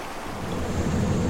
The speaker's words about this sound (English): Water cascades 200 metres into the gorge below, where you can still find groves of red cedar and tallowwood trees.